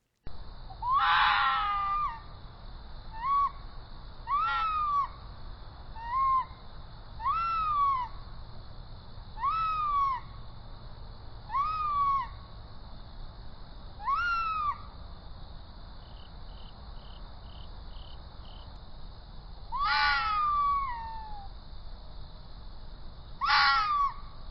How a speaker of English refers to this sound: The most commonly used is a barking wow, wow, wow call. This particular fox sang for my game camera here at Dispatch's HQ late one night.